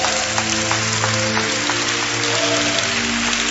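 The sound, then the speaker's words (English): An audience claps steadily for the choirs, a dense, continuous wash of many hands with no pauses, while sustained keyboard-like tones hum underneath throughout. “I want us to clap for the choirs once again.”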